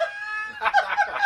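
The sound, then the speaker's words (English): A single rooster crow rings out: a loud, harmonic call that holds steady at first, then breaks into choppy, wavering bursts before ending. “Cock-a-doodle, woo!”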